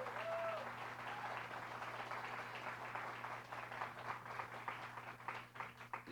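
A crowd claps steadily for several seconds, a dense rush of many hands filling the room, with a faint hum underneath and a brief whistle-like tone near the start.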